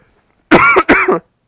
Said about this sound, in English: Sorry, I just coughed.